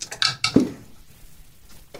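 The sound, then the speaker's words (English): A quick burst of hard clattering clicks as several dice are rolled across a table to count damage, then a pause and one last sharp click at the end. “Now I have to roll all of these dice.”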